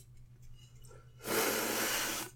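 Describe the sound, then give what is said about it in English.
Someone drinks from a can: after a quiet moment with a low hum, a steady, hissing slurp or sip lasts about a second before cutting off. “Sorry, I'm drinking from a can.”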